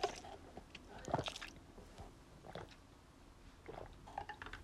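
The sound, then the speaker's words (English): Wet gulping of water: a few swallows with squishy mouth noises spread over several seconds, the clearest burst early on, and no talking. “Sorry, I just took sorry if you had a yummy gulp.”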